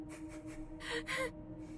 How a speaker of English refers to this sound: Suddenly, the mechanical sound of sniffing pricked Gregory's ears.